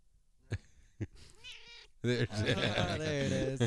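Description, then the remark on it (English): A cat making its debut on the Twist My Arm Weekly show meows, first a short, wavering mew after a couple of sharp taps, then a long, loud, drawn-out meow that fills the rest of the moment. “Kevin missed the cat.”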